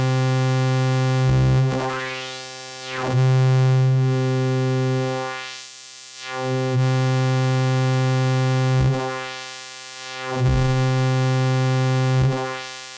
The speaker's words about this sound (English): So let's try the high pass filters now. So here's the Wasp.